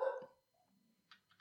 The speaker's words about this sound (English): I don't know what she's barking at.